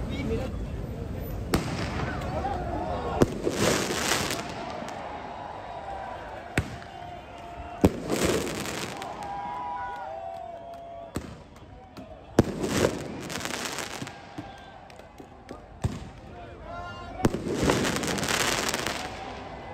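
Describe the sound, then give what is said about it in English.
Fireworks shot by demonstrators at police in Paris go off in a string of sharp bangs and crackling bursts at irregular intervals, over a steady murmur of crowd noise and indistinct voices. “Later that night, demonstrators, upset they weren't even allowed in the park, shot fireworks at police.”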